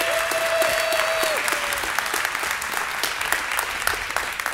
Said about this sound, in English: can we just one last time give a big round of applause to all of our moms in here today?